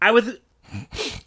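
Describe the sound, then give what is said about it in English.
A short voiced sound is followed by two rough, breathy coughs in quick succession, fairly loud. “Let's take this moment to just cough and drink beer.”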